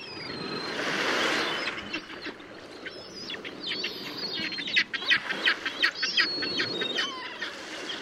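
A flock of blackback gulls and herring gulls calls continuously, with overlapping squawks and cries at moderate volume and a steady low wash of ambient noise beneath. The calls grow busier toward the end.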